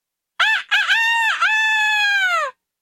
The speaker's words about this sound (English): Is that a cockerel I hear? No, said Vika sleepily. There is no cockerel. For indeed she thought there was none. But when its brothers did not sing out in answer, the bird crowed even louder than before.